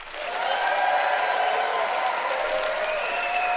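Steady audience applause in Kamloops, the audience picking a contest winner by applause, a dense, even wash of clapping at a fairly loud level, with a few faint cheers or whoops riding over it.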